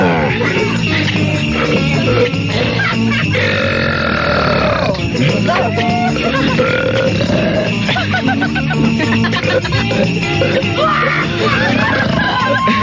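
Three people belch loudly at once, overlapping guttural burps and croaks rolling on continuously for over twelve seconds, raucous with no pauses.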